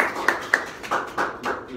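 A small crowd at a talk on Facebook marketing for property agents claps for the next speaker in scattered, uneven bursts for a couple of seconds, moderately loud, with faint voices murmuring underneath.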